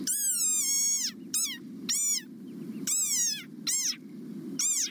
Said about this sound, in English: But sometimes, more unexpected sounds grab our attention. Like this desert rain frog. Squeaking viral sensation.